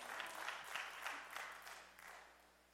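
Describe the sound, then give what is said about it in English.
Women in an audience break into applause, a dense wash of many hands clapping together at a steady moderate level. “For all the women who just clapped their hands, thank you.”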